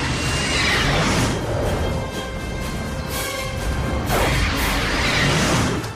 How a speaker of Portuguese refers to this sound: Preparar 3, fogo. Torpedo 3, acaba de ser lançado.